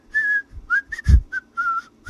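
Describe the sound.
A person whistles a short melody, about six clear notes rising and falling in a lilting phrase, with a few soft low thumps underneath and no talking.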